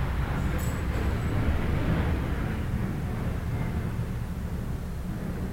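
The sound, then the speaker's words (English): A heavy, rumbling roar of a Russian MiG military jet passing overhead, loud and continuous for several seconds with a deep low-end thunder, easing off slightly toward the end; no voices. “Wow, did you hear that? That was one of those Russian MiG things, boy.”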